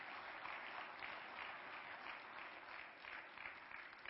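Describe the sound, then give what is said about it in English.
A church audience applauding together for the people who serve and volunteer, a dense, steady wash of many hands clapping that holds at an even loudness for the full four seconds, with no voices standing out. “So can we just give it a round of applause for people who serve and volunteer?”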